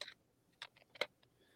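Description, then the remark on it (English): Playing cards being shuffled, heard as a handful of quiet, crisp papery snaps and flicks at irregular intervals, with no voices. “it's while you're shuffling the cards”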